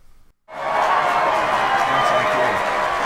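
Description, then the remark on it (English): After a brief silence, a recorded burst of crowd applause, played from a keyboard, cuts in abruptly and carries on loud and steady, a dense wash of clapping with no one speaking over it. “And you playing keyboard today, because I believe you're doing the applause, aren't you?”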